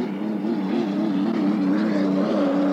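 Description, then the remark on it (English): A racing hydroplane, the number three boat, the Lincoln Thrift, roars loud and steady with a droning, buzzing tone, its pitch wavering slightly as it comes out of the north turn on lap one of Heat 1B, continuous with no talking. “That's the number three boat, the Lincoln Thrift, just coming out of the north turn.”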